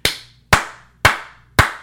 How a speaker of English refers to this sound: I could have done the golf clap. I like the golf clap. Is that better? I can't hear it. It sounds like you're masturbating. Yeah, that's awkward. Yeah, well. We're going to try a different clap then.